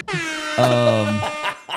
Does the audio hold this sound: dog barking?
no